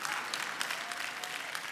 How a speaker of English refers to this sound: I want to make a suggestion, no, a statement. I'm preaching a lot better than you're clapping.